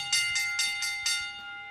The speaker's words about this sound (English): You know what that is. That's the early lunch bell too, guys.